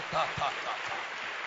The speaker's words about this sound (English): You can clap your hands. Oh, beautiful.